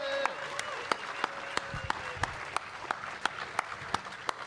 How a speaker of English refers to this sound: Please give her a huge round of applause, then. Thank you very much.